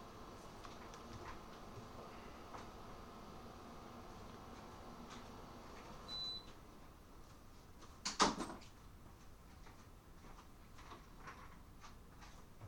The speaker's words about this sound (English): Can you go close that bathroom door?